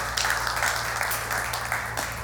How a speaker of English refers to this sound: I think that's worth clapping about.